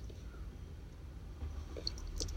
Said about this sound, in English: Excuse me, I had to take a little sip.